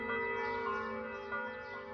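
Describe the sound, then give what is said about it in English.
Church bells ring steadily in the morning during Italy's coronavirus lockdown, their overlapping tones sustaining and blending into a continuous resonant hum, fairly loud and clear, with no voices present. “a day in which no public masses would be offered, I woke up surprised to hear the bells ringing as usual.”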